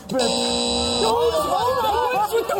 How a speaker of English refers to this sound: Who's with the buzzer?